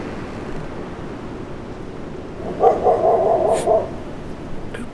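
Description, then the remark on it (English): A dog barks in a quick burst of several yaps lasting just over a second, over a steady rushing background like surf or wind. “Who brought the dog?”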